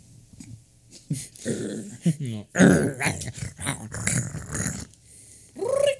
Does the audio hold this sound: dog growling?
yes